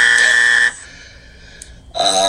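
A loud, harsh buzzer blares for under a second, cuts out to a brief quiet gap, then sounds again at the end. No one speaks.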